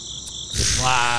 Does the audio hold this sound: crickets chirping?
yes